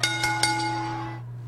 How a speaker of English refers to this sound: What I want us to do is ring that bell.